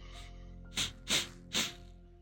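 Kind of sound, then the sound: vocal imitation, voice imitating sniffing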